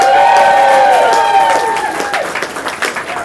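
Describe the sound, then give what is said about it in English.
An audience bursts into a round of applause for the judges, with cheering and whoops, steady dense clapping over the whole stretch, topped by a few high shouts and whistles that fade toward the end. “So round of applause for the judges, please.”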